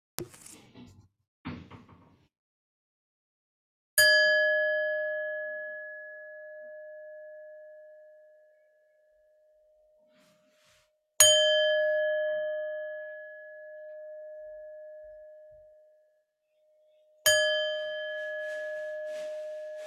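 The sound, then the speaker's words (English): A meditation bell is struck three times to end a meditation practice, at slow, even intervals, each clear, resonant tone ringing out and fading gradually into silence, after a few faint handling noises. “I will ring the bell when we are to come out of our practice.”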